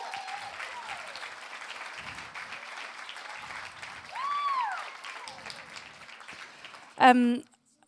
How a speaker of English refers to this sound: Why don't you give them a massive round of applause?